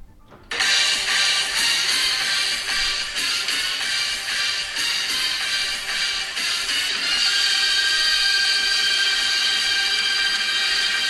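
An automated door grinds open with a loud, steady, hissing mechanical whir that starts abruptly and runs without pause for about ten seconds, with no one talking.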